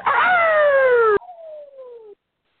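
A single loud rooster crow, one drawn-out cock-a-doodle-doo that sinks in pitch and trails off into a softer, fading tail, heard alone with no voices.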